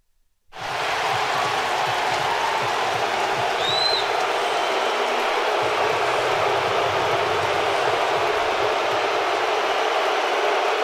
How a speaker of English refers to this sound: He got booed when he was entering Seattle's home. Can we hear that, please?